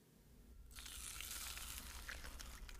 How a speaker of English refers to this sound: I was awoken by a different sound. A weird snapping crunch that made me shoot up in bed, believing the ceiling was about to collapse under the weight of snow.